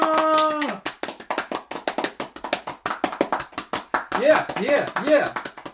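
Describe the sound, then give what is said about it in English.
Rapid, steady clapping from a small crowd follows a brief sung or spoken vocal note, with a few rising whoops mixed into the applause near the end. “I was expecting a little more applause.”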